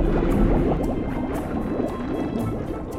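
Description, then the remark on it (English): Dense, steady bubbling and gurgling water as the outer sea door of an underwater airlock chamber opens, a rush of air bubbles escaping underwater, fairly loud with a low churning rumble throughout. “Opening outer sea door.”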